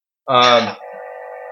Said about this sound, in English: The phone keeps like making a weird fart noise.